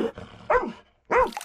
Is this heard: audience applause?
no